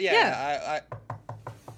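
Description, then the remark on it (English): A brief wavering voice gives way to five quick, evenly spaced knocks, each a dull rap like knuckles on a wooden door. “Are you knocking?”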